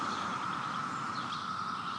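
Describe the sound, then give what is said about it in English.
A dense chorus of periodical cicadas drones on without pause, a steady, high, whirring buzz that holds an even loudness throughout, with no voices over it. “As you can hear, the periodical cicadas are still here.”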